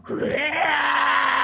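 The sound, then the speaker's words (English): A single loud, sustained vocal screech: a voice imitating the Tyrannosaurus-like screech of a 15 to 20 foot tall feral amphibious Nephilim shaking itself as it climbs from the water onto docks, rising from a rough growl into a strained, wailing roar that holds steady for over a second. “That as it gets out, kind of shakes itself loose, you hear it just go with almost like a Tyrannosaurus like screech.”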